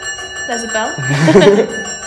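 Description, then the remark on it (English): A bell in Parliament rings continuously with a steady, high electric tone throughout, announcing that prayers are beginning, while people talk over it. “There's a bell.”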